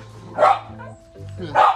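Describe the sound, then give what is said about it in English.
Two sharp, loud dog barks ring out about a second apart, with a low steady hum and faint background murmur between them. “See, even the dogs agree with us, bro.”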